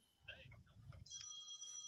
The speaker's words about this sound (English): Uh-oh. Oh, phone call.